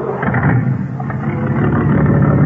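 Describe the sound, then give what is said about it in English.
A car rolls past, its engine a loud, steady roaring rumble that holds at an even level for a few seconds, with no voices over it. “Next car, Ed.”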